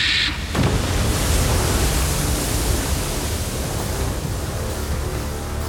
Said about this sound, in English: A huge wave erupted out of the ocean. It came crashing down onto the shores of Athens, rushing through Bahadur's men.